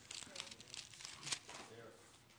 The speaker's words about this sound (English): Sorry, I hear some pages turning. I'll let you get there. That never bothers me. Pages turning are a pleasant sound to this former musician here. I like it.